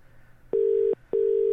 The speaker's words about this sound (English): Oh, we've got a ring. It's ringing. Here we go.